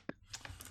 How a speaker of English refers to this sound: Speaking of which, I'm actually going to roll percentile dice to see if the vial breaks or not.